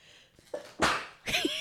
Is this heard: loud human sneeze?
yes